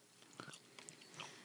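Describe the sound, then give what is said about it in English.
Soft chewing of a cola-flavored Starburst chewy candy: a handful of moist smacks and squelches at an uneven pace, quiet and isolated with no talking. “It says chew it and bin it.”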